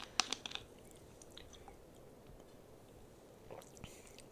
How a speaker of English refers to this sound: Let me get another sip.